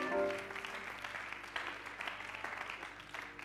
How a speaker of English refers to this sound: I think we ought to give the Lord a hand clap of praise. Would you help me do that?